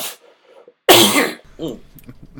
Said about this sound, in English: Nah, it's a cough. I've been dealing with a cold the last couple weeks.